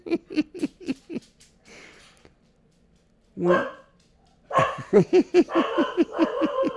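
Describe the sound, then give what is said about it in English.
Several dogs bark in quick, repeated bursts, pausing briefly before a louder flurry of overlapping barks and yips erupts, continuing rapidly to the end. “Oh, we're going to have dogs barking.”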